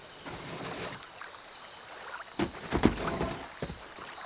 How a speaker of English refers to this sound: It's not like it's a luxury yacht or anything. It's a stupid fishing boat. Pull it together and help me get it in the lake.